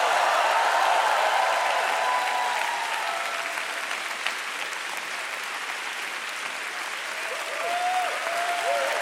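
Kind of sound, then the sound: crowd, audience clapping and shouting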